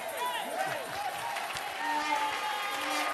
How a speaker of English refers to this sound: If they will give me, if they will give the Lord a better clap and a shout, I'll preach well.